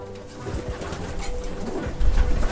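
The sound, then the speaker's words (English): Several pigeons, the breeding stock of a pigeon loft, coo in overlapping, throaty rolls inside the loft, with a dense low rumble of birds and shuffling; no one speaks. “This is the base of my loft. This is the breeding stock.”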